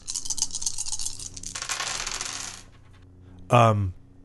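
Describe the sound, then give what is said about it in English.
Dice, including two black dice, are rolled for a brawl check on a melee attack; they clatter and roll across a hard table for a couple of seconds, a busy rattling that fades out. After a short pause, a brief, louder knock sounds near the end. “And so I'm going to roll my brawl, and what would the difficulty be?”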